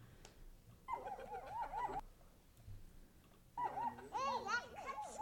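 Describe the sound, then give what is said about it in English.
Puppies in a played video clip of Nelk surprising Hasbulla with puppies whine and yelp in two bursts of high, wavering cries, the second longer and louder, over a low, noisy background. “Nelk surprises Hasbulla with puppies.”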